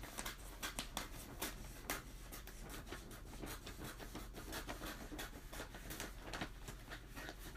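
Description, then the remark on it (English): Wrapping paper crinkles and rustles steadily as it is pulled taut around a gift, with sharp crackling bursts over a continuous scratchy texture and no voices. “I'm trying to stretch this paper as far as I can because I'm so worried I'm going to run out.”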